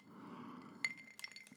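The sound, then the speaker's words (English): Glasses clink once in a toast with a bright, ringing ping, followed by a few lighter glassy taps and knocks over a soft, quiet background; the drink is tomato juice. “Cheers, everybody. I'm drinking tomato juice.”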